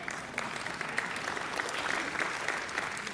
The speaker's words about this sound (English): And I would have to say, yeah, there's a couple people clapping for that. I'm still happy about it.